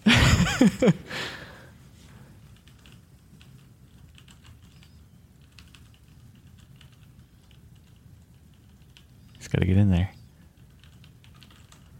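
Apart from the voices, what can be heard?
typing on mechanical keyboard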